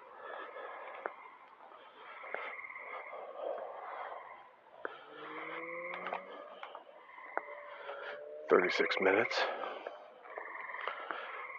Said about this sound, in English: Yeah, those are frogs.